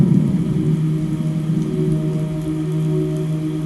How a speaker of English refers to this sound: So remember, even though you're in the storm, thunderstorm is pouring down rainy, he has not left you.